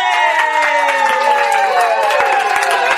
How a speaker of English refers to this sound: Listen to that crowd. And the crowd goes wild.